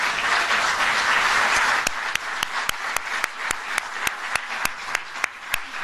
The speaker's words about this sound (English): How about a round of applause for Linda McMahon, the administrator of the small business? Stand up and take a bow, will you, please?